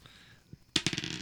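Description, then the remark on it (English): A die, rolled to pick a hairstyle, clatters across a hard surface, a quick run of sharp, bright clicks and rattles that bounce several times before settling, after a short, nearly silent pause with one faint tap. “If you roll a five, it'll be bald with a mullet and a do-rag.”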